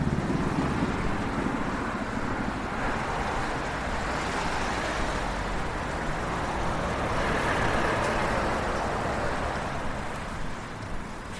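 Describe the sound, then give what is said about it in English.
A steady, dense roar of passing traffic on a busy main road fills the air, a continuous wash of engine and tyre noise with no clear pauses, loud throughout. “And then we're turning left on the busy main road.”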